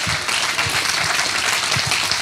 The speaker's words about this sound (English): Somebody clap your hands, say amen.